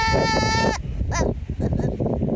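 A baby goat lets out one loud, high, strained bleat lasting under a second, followed by a stretch of rougher, choppy noise with a brief rising squeak.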